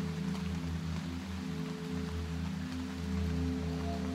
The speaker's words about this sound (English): Listen to the rain and repeating sounds.